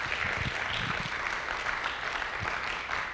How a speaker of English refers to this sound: Come on, yeah, you can give him a good round of applause.